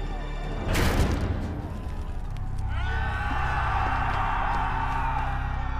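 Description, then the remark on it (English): A rebel mob in England, massed outside the walls, yelling as it storms the gates of the tower: a loud rush of noise surges up, then settles into a steady, dense roar of many shouting voices that holds to the end. “The mob storms the gates.”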